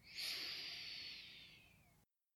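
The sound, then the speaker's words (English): A single long, deep breath drawn in through the nose, airy, swelling quickly and then tapering off over about two seconds before silence, taken as part of a guided breathing exercise. “All right, let's do three breaths.”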